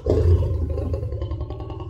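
A lion in a pen roars loud, a deep rumbling growl that holds steady for about two seconds with no voices over it.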